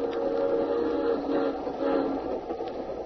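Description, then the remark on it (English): A steady rumble of a train rolling along the rails on an overnight journey, with a continuous droning hum and faint clatter throughout, no voices. “Well, we'd been on the train overnight when he first mentioned it.”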